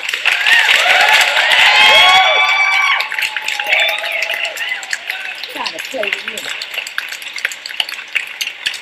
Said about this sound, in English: Yeah, I found that. But all right, that's me. I love me some applause.